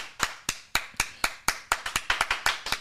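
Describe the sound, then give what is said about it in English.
Sharp hand claps ring out one after another, about a dozen in all, steady at first and then quickening near the end, with no one talking over them. Audience applause for the New York City crowd. “We need a great, great, great round of applause for the crowd in New York City.”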